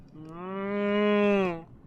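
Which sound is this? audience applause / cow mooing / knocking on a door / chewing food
cow mooing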